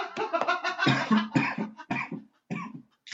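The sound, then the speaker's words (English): A fairly loud fit of coughing: a rapid string of harsh bursts lasting a few seconds, trailing off into a couple of final coughs after a short pause. “Damn it, I was holding in that cough.”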